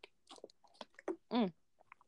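Someone sips water: a few soft, wet mouth clicks and slurps, then a louder voiced gulp as they swallow, followed by faint lip sounds. No one speaks.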